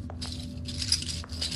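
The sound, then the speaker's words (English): Gold coins jingle and clink together in a few quick, bright bursts over a low steady hum, moderately quiet, as 500 gold coins are grabbed from a bag, with no one speaking. “His coins are chinkling around.”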